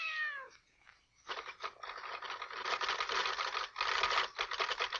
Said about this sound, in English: Oh, Jimmy Stewart and a kitten.